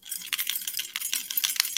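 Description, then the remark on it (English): Keys jingling continuously for a couple of seconds, a bright, metallic clatter of many small irregular clinks, moderately loud, with no voices. “Just jingling keys in front of your face for like, I have a dog here and it just woke up because of that.”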